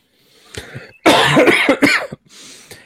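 A loud, close burst of harsh coughing, several rough hacks in quick succession, preceded by a softer throaty cough and trailing off into breathy noise.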